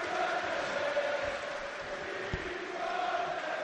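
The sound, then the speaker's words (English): A large football crowd in the South Bank stand of a stadium sings together in a steady, sustained roar, the massed voices blending into a continuous chant of "Don't Sell Neves" without letting up. “They're still desperate, still singing”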